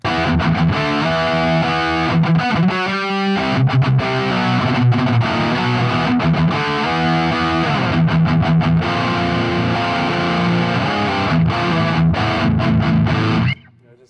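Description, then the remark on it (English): Heavy, chugging distorted electric guitar plays dense palm-muted riffs with thick, saturated amp tone, loud and continuous for about thirteen seconds before cutting off abruptly. No voices. “And then, the distortion is again, next level.”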